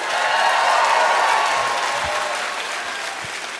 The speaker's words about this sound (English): Yeah, let's applaud that.